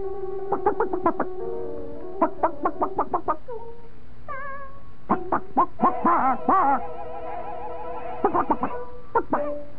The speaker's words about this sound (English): I knew I'd catch you off base, but God, where do you hear this chicken?